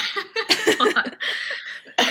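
A fairly loud bout of coughing: several harsh bursts in quick succession, with a raspy throat-clearing stretch in between and one more cough at the end. No talking.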